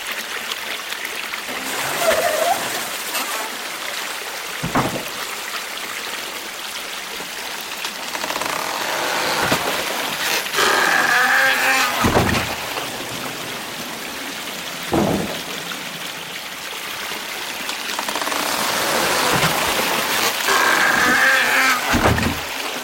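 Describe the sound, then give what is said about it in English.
A water-powered wooden mortar (karausu) at the Onta Pottery Village in Japan creaks as its scoop, filled from the river, weighs down the timber, then pounds soil with heavy thuds every few seconds, over a steady rush of flowing water. No one speaks. “When the scoop is full, it weighs down the timber, making that creaking sound until the water drains out and the other end of the karausu comes crashing down, pounding the soil.”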